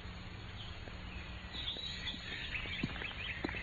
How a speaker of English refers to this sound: The music of the birds and a fresh breath of the spring.